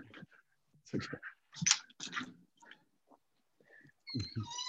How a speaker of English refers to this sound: excuse me, my dog's here.